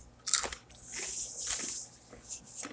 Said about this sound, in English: Crunching stuff on a podcast is good. Oh, these are spicy. I mean, they're all right. They're okay. They're kind of spicy. I wouldn't eat a lot of them.